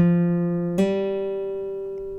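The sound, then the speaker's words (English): A guitar hammer-on: a sustained plucked note jumps to a higher pitch as the third finger hammers down just behind the fret without the picking hand, a soft, unpicked attack, and the new note rings out, slowly fading, with no talking. “Now, what's key in getting this hammer-on to sound correctly is it's not how hard you press the finger down.”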